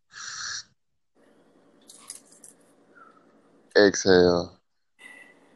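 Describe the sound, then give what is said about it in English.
A long, faint inhale drawn in for about three seconds during a deep-breathing warm-up exercise, then a loud, voiced exhale like a sigh, with brief vocal sounds around it. “We're going to do a pre-warm-up, a pre-breathing warm-up, where we slowly inhale for 3 seconds and let loose.”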